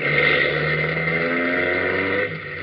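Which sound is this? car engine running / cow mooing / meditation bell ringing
car engine running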